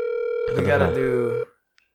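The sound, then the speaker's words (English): A steady electronic phone ringback tone hums for about a second and a half, with a voice talking over it midway, then cuts off abruptly into silence and a faint click. “Pick up the phone. I want to see if she picks up the phone.”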